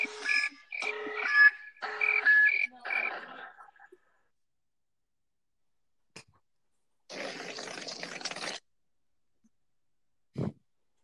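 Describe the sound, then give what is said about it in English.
A 'tactical nuke incoming' alarm effect: about four seconds of choppy, buzzing tonal pulses, then silence, a broad rushing burst of noise, and one short low thump at the end. “this is what noise happens after I make a joke in front of a loud crowd of people. Tactical nuke incoming!”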